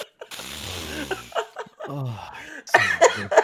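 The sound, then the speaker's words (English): A voice makes playful sniffing noises, mixing voiced, laugh-like sounds with several short, breathy bursts toward the end, imitating flowers coming up to someone and sniffing them. “Fucking flowers, they just come up to you and sniff you, and I'm like, pal, could you not?”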